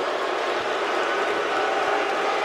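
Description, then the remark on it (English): A large crowd at a wrestling show boos steadily for a couple of seconds while a wrestler stands in the ring holding a microphone, a dense, continuous roar of many voices with no pauses and no single speaker standing out. “he is on his way out here to answer that call as he is in the ring and he has a microphone and he just lets the crowd boo.”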